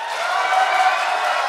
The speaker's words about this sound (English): If I may ask by sound of applause, who dislikes it?